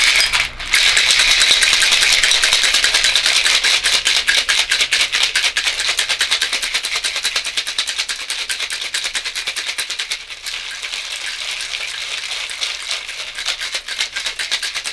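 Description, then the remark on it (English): A cocktail shaker is shaken hard and fast for about fourteen seconds to crush the cucumbers inside, a dense, bright, metallic clatter with ice and cucumber pieces pounding, steady and loud with no talking. Shimmer powder is also in the mix. “So I want to be vigorous with the shaking as I want to beat the shit out of those cucumbers.”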